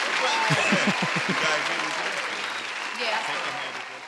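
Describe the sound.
An audience claps steadily in a dense, crackling burst of applause, with a few voices cheering over it at the start before the clapping carries on evenly.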